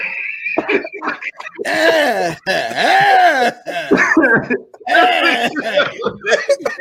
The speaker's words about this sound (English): Nigga holding their coughs and shit, yo. Nigga try holding coughs and shit.